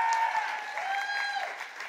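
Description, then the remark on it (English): An audience applauds the debaters at the end of a live debate event, a dense steady wash of many hands clapping at once for about two seconds, with faint high whoops or whistles carried along on top. “Can I have a round of applause for all of our debaters tonight?”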